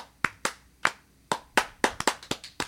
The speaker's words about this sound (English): Do a bad applause. I'm trying to get everyone to do applause. Here, here.